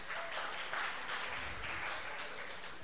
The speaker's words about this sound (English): See, that's very angry clapping. That's just, like... It's just hands coming to the brain.